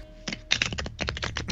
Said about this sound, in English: Sorry, I'm like shuffling my cards again.